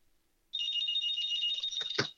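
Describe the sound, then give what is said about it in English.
A landline home phone rings with a steady electronic trill that starts abruptly and continues, ending in a couple of sharp clicks or knocks as it is silenced. “I was home phone next to me ringing and I had to silence it.”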